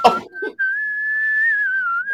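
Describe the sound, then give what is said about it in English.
A person whistles the slow, smooth opening melody of a song, mostly long held notes with gentle rises and dips, after a brief noisy burst at the start. “Can you give me the whistle?”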